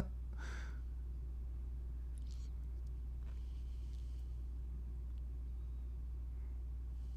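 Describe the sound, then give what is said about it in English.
A car in a film scene drives with a steady, heavy low engine rumble throughout as the character Argyle wrecks it; a brief sharper burst near the start and a few faint clatters. No one speaks. “wrecking the car, but running up to punch a man in the face.”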